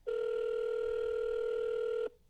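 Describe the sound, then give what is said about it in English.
A single steady electronic telephone ring tone, from a call placed back to a hunter to get a weekly deer report, holds a constant mid pitch for about two seconds, loud and unbroken, then cuts off abruptly into near silence. No one speaks. “Called him back to get a deer report.”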